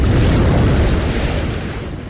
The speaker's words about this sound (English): There's a splash.